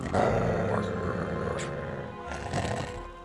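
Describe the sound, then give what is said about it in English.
A low, rumbling dog growl, sustained for about three seconds with rough, gravelly texture, seemingly voiced by a person imitating the sound. “Dog starts to growl.”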